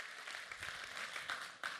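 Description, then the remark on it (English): An audience at Illuminate Church claps for 158 salvations in a dense, steady wash of applause, many hands blending into a continuous crackling roar with a few sharper individual claps standing out. No voices are heard. “I wonder if when we clap for 158 salvations, heaven's like, that's it?”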